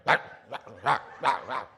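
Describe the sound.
A person mimics a dog's bark with five short, punchy barks in quick, slightly uneven succession, fairly loud, with brief gaps between each yelp.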